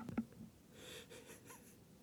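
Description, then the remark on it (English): A brief nose blow: a short sharp snort, then a breathy, rasping gust of air through the nose that trails off. Fairly quiet, with no talking. “I heard you blow your nose.”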